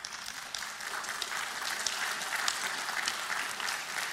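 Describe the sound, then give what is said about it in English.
An audience applauds steadily, a dense wash of many hands clapping at an even, moderately loud level for the full length, with no voices rising above it. “See if you're still clapping in a second.”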